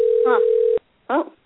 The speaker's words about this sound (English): Huh. Oh, now we're getting a ringtone.